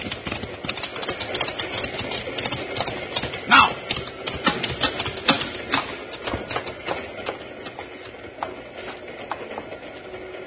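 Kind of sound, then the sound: vehicle, moving cattle train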